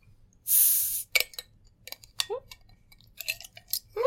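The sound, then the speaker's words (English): The top of a beer is popped open with a loud, sharp fizzing hiss lasting about half a second, then come scattered clinks and short gurgling, splashy sounds as the beer is poured. “I'm going to pop this top.”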